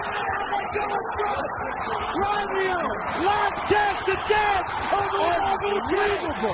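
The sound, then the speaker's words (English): An arena crowd at a UCLA vs. Gonzaga basketball game screams and cheers as UCLA comes back from 17 points down to win, in a dense, continuous roar, with many overlapping shrieks and whoops rising and falling in pitch for the whole stretch and no break in the noise. “So much screaming, so much cheering, because it was a major, I mean, it was a UCLA down 17 points in the game to come back and beat Adam Morrison and Gonzaga, and one of the thrillers,”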